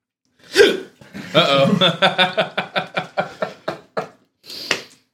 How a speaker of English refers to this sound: I got the hiccups, bro.